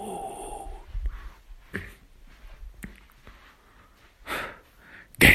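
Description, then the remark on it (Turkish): Several heavy, breathy inhales and exhales come at uneven intervals, fairly loud, ending in a sharper, forceful breath. No talking. “Derin. Nefes alıyorum.”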